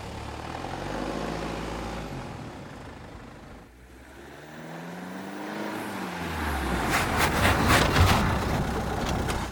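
The engine of a 1929 Ford car starts, rumbling, shuddering and sputtering, with a brief dip before the revs climb again into a louder, rattling drive as the car pulls forward down a mountainside. No one speaks.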